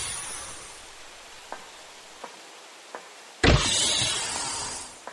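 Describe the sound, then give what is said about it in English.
A steady hiss with three faint clicks, then a sharp thump as a door unseals for egress, followed by a loud rushing hiss of air that fades slowly, with no voices. “You are cleared for egress. Door opening.”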